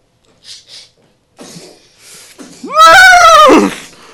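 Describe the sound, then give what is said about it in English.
A horse that has just been shot lets out a loud whinny lasting under a second, its pitch rising sharply then wavering downward, preceded by a few faint breathy snorts and rustles. “Ah, crap! Shot my dead horse!”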